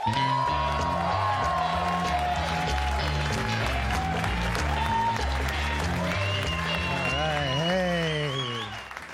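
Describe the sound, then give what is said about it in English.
Sustained audience applause with scattered cheers and whoops as comedian Gary Veeder takes the stage at the Gotham Comedy Club in New York City. Loud, steady walk-on music with a pulsing bass line plays along, holding level for several seconds before tapering off at the end. “Please give some love to Gary Veeder.”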